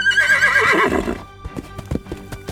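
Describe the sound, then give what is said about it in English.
A horse named Blue gives a loud, wavering whinny, then its hooves clip-clop in an uneven series of hard knocks as it moves off. “Why don't I ride Blue and you run around?”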